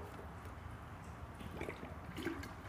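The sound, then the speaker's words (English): Someone quietly drinks water from a blender shaker bottle sent by their company, with a couple of soft gulps and faint liquid sloshing against a low, steady background hum. No one speaks. “Actually, this was not intentional, but I wanted a drink of water. Like my company sent me this blender bottle.”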